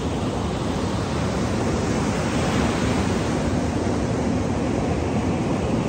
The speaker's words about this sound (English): take the ocean in together.